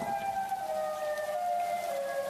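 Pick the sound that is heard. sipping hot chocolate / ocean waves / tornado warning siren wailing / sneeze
tornado warning siren wailing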